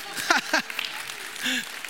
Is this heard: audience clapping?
yes